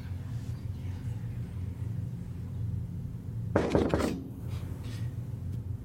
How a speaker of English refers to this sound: I heard that. What? It was a knock.